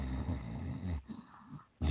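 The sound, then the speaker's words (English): A voice imitates a weird, raspy growling breath, a low guttural rumble that rattles for about a second, pauses with a softer wheeze, then rumbles again. Fairly loud, with no other talk. “Some sort of weird growling.”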